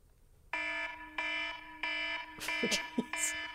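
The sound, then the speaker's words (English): A harsh, buzzy alarm clock tone blares in several repeated bursts, loud, with short noisy crackles overlapping the later pulses. “Is there a perfect alarm tone?”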